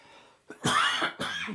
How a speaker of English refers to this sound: Pardon me, I don't have a cough button, okay?